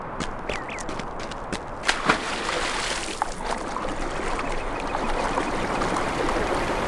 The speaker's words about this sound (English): Now, I jumped into the water of the river because I could see that in the distance there were some very dangerous guards standing there. So rather than confronting them, I prefer to swim through the river to the other side to enter the lake.